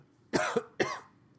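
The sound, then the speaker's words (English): Two harsh coughs in quick succession, the first slightly longer with a rasping catch, followed by a short pause of near silence. No talking. “And then I like to cough all over the poor girl.”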